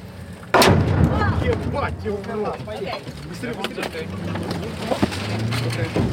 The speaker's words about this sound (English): That was the sound of artillery landing just next to our car, our armored car.